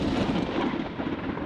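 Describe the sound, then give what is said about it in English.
A steady, heavy rumble of thunder rolls on without a break, loud, with no voices over it. It is night under dark clouds, with lightning between the thunderheads and no rain falling yet. “Lightning danced between the thunderheads, but no rain had fallen yet.”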